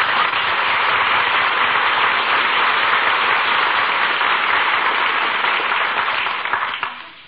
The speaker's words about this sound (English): Acknowledges the applause, takes a bow.